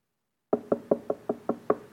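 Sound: knocking on a door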